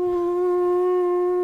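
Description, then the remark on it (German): A voice imitates an elephant's trumpet with one loud, steady, buzzy tone held at a fairly high pitch for about a second and a half before cutting off abruptly. “War das ein guter Sound von einem Elefanten?”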